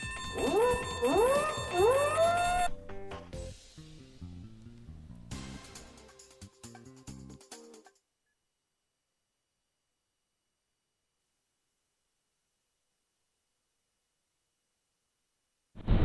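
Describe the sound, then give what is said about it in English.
A voice attempts a cricket impression with three quick, rising, squealing whoops, followed by a few seconds of clattering noise, then silence before a short loud burst at the end. “Was that your cricket impression? A cricket. I don't know really what it was. It sounded like a dying rooster.”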